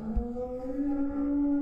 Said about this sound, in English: In the meantime, please enjoy these sounds of a cow giving birth.